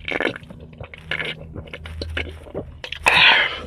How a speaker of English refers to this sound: That was a sip.